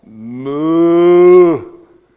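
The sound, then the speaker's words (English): A single long, loud cow moo, rising into a sustained bellow for about a second and a half before cutting off. Nothing else is heard. “Do you know your future a week from now, Mr. Cow? And what will they say?”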